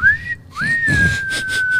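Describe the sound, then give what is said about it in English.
A person whistles two clear, sustained notes into a microphone, the first rising briefly and the second a long steady tone held for over a second, fairly loud with some background rumble. “She gets someone to whistle into a microphone.”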